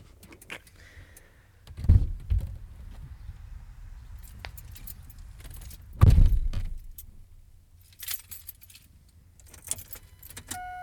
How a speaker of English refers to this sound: Just jingling keys. Trying to start it.